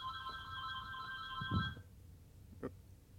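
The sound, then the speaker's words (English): A phone rings with a steady electronic tone that holds for nearly two seconds and then cuts off abruptly, followed by a faint thump and light background noise. “had a phone call, so I guess he muted his mic for a second.”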